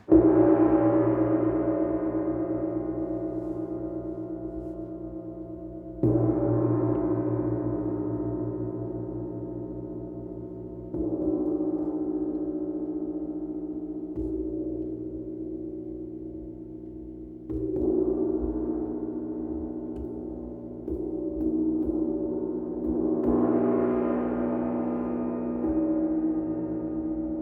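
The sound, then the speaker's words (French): A gong struck about six times at uneven intervals, each hit blooming into a rich, shimmering drone of overlapping tones that slowly fades and blends into the next. No voices. “J'ai beaucoup de respect physique pour mon gong, mais du coup, du fait que ce dialogue est possible sur un niveau vibratoire et puis finalement à des niveaux de plus en plus subtils, on fait vraiment un être à part entière.”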